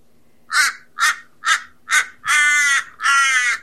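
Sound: crow cawing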